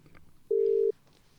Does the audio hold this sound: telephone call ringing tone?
yes